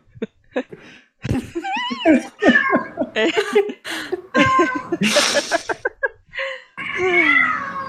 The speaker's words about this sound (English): Also, do you hear a cat?